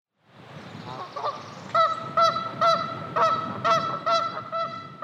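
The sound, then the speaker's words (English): A gaggle of geese perched on the banks of Lincoln Lake, north of Lincoln, Arkansas, honks repeatedly in loud, overlapping calls on a spring morning, with a steady outdoor rumble underneath and no voices. “A gaggle of geese squawked this beautiful spring morning, perched on the banks of Lincoln Lake.”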